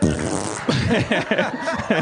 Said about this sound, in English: Fart break.